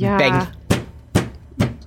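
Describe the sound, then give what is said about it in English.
A brief voice, then three loud, evenly spaced bangs against a wall, each a sharp thud with a short ring-out. “Banging on the wall.”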